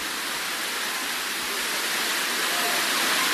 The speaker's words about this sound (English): So, are you giving me a little volume? Beautiful rain. Beautiful.